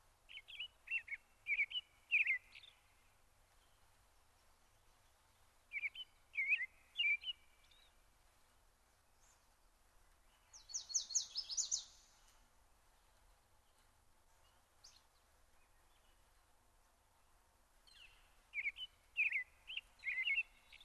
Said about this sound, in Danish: Det eneste, du kan høre, er fuglefløjt.